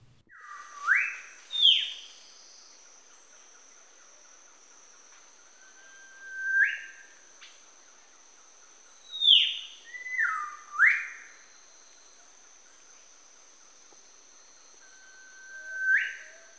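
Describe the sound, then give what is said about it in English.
A Biak Whistler sings loud, piercing whistled phrases, each a rising or swooping note, delivered in spaced bursts about six times, with a steady high insect-like hum in the background. “But this is the Biak Whistler. Yeah, we'll just go ahead and play it first.”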